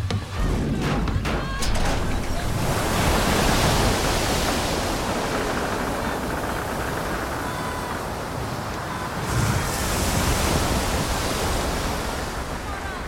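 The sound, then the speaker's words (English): Loud, continuous roar of rough, stormy sea water and wind around a small boat crossing a sea in rain, with heavy waves surging and crashing in a dense, unbroken wash of noise. “So this is one part of a journey in which they are crossing a sea in a boat, and it's, well, it speaks for itself, I think.”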